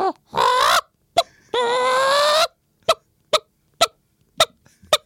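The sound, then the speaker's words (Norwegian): A person imitates a hen: two long, strained squawking calls followed by a series of short, evenly spaced clucks, loud, with no other talking. “For det ikke sånn, det ikke et menneske som lager hønelyd. Det høne.”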